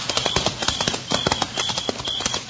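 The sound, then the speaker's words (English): Horse hooves clip-clop in a steady, brisk rhythm as a rider sets off on horseback toward Salt River, a series of sharp knocking beats at moderate volume that carry on evenly without any voices. “Okay, I'm on my way. Quiet, Mike. Come on, horse.”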